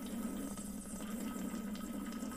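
A wet, gurgling slurp sound effect runs steadily for a couple of seconds at an even level, with a low watery hum underneath and no talking.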